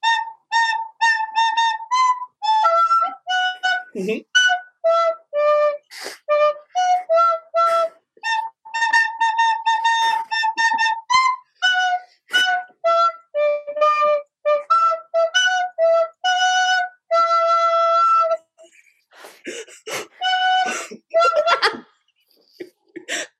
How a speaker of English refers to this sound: People are excited about recorder. It's a great instrument. It makes my cat mad, so apologies.